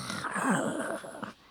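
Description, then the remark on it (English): A single harsh, rasping wolf snarl swells and wavers for just over a second, fairly loud, then cuts off abruptly. No voices accompany it. “But the top of this ear still has a mouth with vicious teeth, and this ear wolf snarls at you.”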